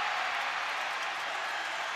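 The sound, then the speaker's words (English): An arena crowd at a Golden State Warriors basketball game roars and cheers after Curry makes a three-pointer from the right wing, a steady, dense wash of noise that holds at an even level for the full two seconds, with no single voice standing out. “The crowd responding here.”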